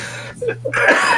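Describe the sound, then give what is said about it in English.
A person coughs: a rough, breathy burst, a short pause, then a longer raspy, wheezy cough with a steady low hum behind it. “Did you take a cough drop or no?”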